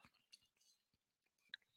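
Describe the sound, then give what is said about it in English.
Quiet sipping of water: a few soft wet mouth clicks and a small gulp spread over a couple of seconds, with no one talking. “had to get a sip of water.”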